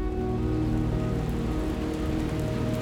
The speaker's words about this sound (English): It began raining sometime while we were setting up.